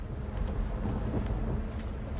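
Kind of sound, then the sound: nature, thunder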